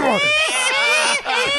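A man lets out a continuous high-pitched, strained screech, loud and wavering like a wail, lasting under two seconds with a brief dip near the end.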